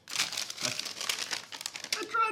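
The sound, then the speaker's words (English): Soft crinkling and rustling of a paper towel being crumpled, a steady run of dry crackles over a couple of seconds, with a brief vocal sound right at the end. “Paper towel to help you, and it doesn't make noise.”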